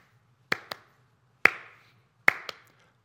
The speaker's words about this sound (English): Sitting in church or in a different venue and people are clapping. Nice, right? Really easy. Somebody gets all fancy, throws in the fancy clap.